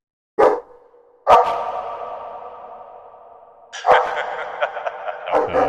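A puppy barks and yelps in a handful of sharp bursts, each trailing into a drawn-out, ringing whine; fairly loud, with no talking.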